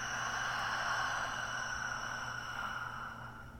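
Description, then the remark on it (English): A slow, soft breath out during a guided breathing exercise, a steady airy hiss that eases off slightly toward the end, over a quiet sustained drone with no talking. “Again, inhale and exhale.”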